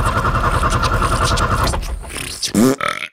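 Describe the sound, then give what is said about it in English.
A voice imitates a truck engine trying to start, a rough, rhythmic sputtering rumble for a second and a half that stalls, followed by a short strained vocal groan. “I'm about to power up the chuckle truck and head out on a brand new adventure.”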